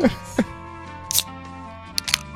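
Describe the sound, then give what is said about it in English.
A sharp metallic pop and short fizzing hiss as the tab of a beer can with a red, green and white swirly design is pulled, followed by a couple of quick smaller clicks, with faint voice-like murmuring underneath. “Let's crack this disgusting beer open.”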